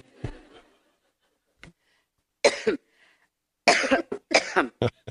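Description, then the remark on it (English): Hillary coughing while speaking during a campaign: several harsh coughs in uneven bursts, a lone cough, a brief click, then a strong double cough followed by a rapid cluster of rough, hacking coughs, with short silences between. “Coughing”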